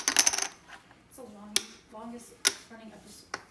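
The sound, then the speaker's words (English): During a trivia quiz game, a cluster of game chips clatters onto a table, followed by three sharp, bright clicks as more chips drop one at a time, with people talking softly between them. “Got 4 chips over here, buddy.”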